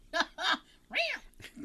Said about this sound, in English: A ghostly cat was seen stalking the premises, and some reported hearing disembodied meows.